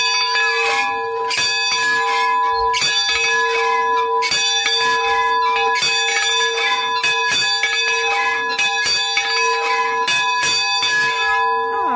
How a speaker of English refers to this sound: Our first start is actually ringing the bell. That's our official start.